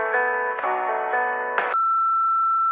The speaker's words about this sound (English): so please do your thing. When you hear that beep.